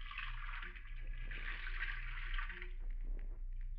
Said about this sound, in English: And then walk to the sink. You empty it. You fill it with water from the faucet.